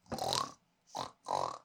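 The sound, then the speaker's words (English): Three short, throaty pig grunts in quick succession, a longer one followed by two briefer oinks, fairly loud with no talking. “Pigs sounds are good.”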